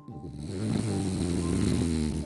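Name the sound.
pet snoring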